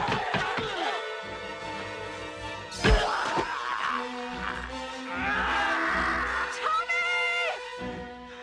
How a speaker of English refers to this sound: That was such a, like, that combined with his table flipping and smashing, like, Tommy has established himself as a kung fu badass.